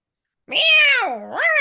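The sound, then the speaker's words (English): After a short pause, a voice imitates a cat's meow: one drawn-out, fairly loud call whose pitch sags and then rises again at the end, with no other sounds. “I don't think wild cats meow, Mom.”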